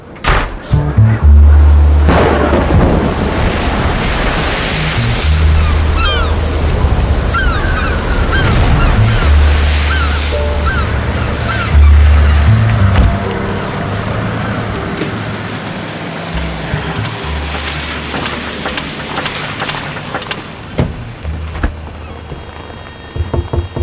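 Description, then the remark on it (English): A loud, continuous storm roars throughout on a dark, dreary night, with rushing wind and heavy, deep rumbles of thunder swelling and fading in waves, with no clear voices above it. “Come in, out of the storm.”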